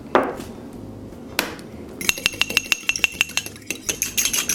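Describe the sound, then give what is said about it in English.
A fork or whisk clinks rapidly and rhythmically against a small bowl as an egg is beaten, the ringing taps coming several per second, preceded by a couple of softer knocks and shuffles. “So take an egg and mix it in a little bowl.”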